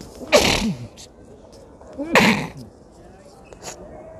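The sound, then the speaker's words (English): Two loud sneezes about two seconds apart, each a sharp burst trailing into a short voiced tail, with quiet background between them. “Oh, I'm about to sneeze.”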